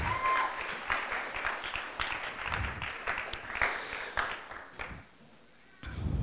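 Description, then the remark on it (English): A crowd at a camp applauds the worship band steadily, dense overlapping claps, then the clapping thins and fades out briefly near the end before a short burst resumes. “Can we just give a round of applause or show our appreciation with clapping to the band”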